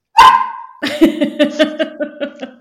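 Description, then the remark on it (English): A dog gives one sharp, drawn-out bark, then breaks into a quick, steady string of shorter whiny barks, loud, with no one talking. “Speaking up.”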